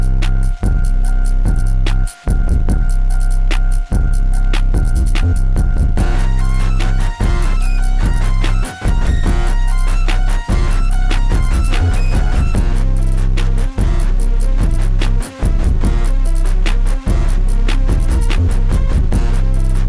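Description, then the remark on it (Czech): A loud, dense electronic music track driven by a tense, jittery beat over a heavy droning bass, with odd crackling noises and hissy static textures layered throughout, no voices. “Super track, který má takový jako neurotický beat a ozývají se tam takový jako zvláštní ruchy a šumy.”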